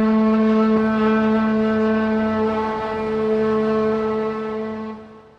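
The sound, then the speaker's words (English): The Pacific Lumber company work whistle in the company town of Scotia, blown to call employees to work three times a day, sounds one long, loud, steady blast, a deep, rich tone held on a single note for about five seconds before it tapers off. No one speaks. “Pacific Lumber still owns every building here and whistles its employees to work three times a day.”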